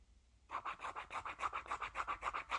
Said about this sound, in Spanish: Y hoy día voy a usar un boli de tinta roja, bien roja, para cruzar el día.